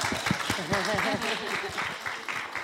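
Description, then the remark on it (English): A brief burst of hand clapping, quick and uneven, with sharp claps repeating for a couple of seconds while voices talk and exclaim over it. “That's a clap moment.”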